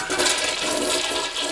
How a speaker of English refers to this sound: Flush noise. Cue the flush noise.